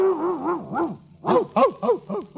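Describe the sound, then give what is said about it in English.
Loud dog-like vocalizing from inside a kennel, apparently a human voice imitating a dog: a wavering, warbling whine followed by four or five short, arched barks in quick succession. “No, just my dog.”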